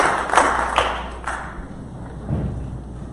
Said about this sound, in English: Please clap your hands together for the Lord and be seated.